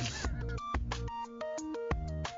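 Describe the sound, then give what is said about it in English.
A short, bright electronic melody from a song that sounds like a phone ringtone, with quick stepping notes and steady beats, played loud with no voices. “Somebody's phone is ringing. Oh, no, it's the song. Sounds like a ringtone.”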